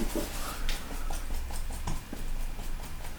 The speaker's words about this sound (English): Dog's just scratching her chin.